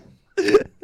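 A single short, harsh cough bursts out close by after a brief pause, lasting about a third of a second, with a faint murmur of voice just before it.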